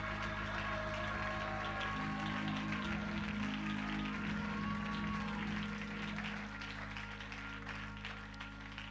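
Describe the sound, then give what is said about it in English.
A standing audience claps hands together in praise in a dense, steady patter, sustained low musical tones humming beneath, the clapping easing off slightly near the end. “Stand and clap your hands and lift your voice and give him praise if you believe that here tonight.”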